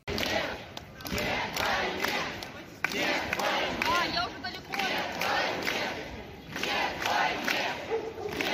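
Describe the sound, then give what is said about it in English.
A large crowd of protesters in St. Petersburg shouts together in loud, sustained bursts, voices overlapping into a dense roar with brief dips between chants, shouting no to the war. “They're now protesting inside St. Petersburg and are shouting no to the war.”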